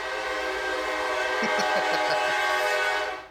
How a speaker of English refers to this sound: Yeah, there's a train track that goes right by the studio here, so it's great. I had to take my headphones off there for yeah. a second. I can't believe that was that loud.